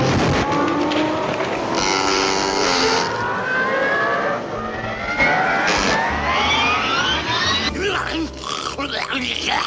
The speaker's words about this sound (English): Okay, it is now time. We rev up the engines. It is now time for the Chiefs Rant.